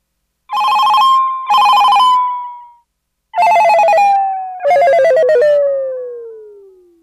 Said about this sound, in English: You know that shit is serious when … is my fucking ringtone. Legit. Legit my ringtone. Hold on a minute.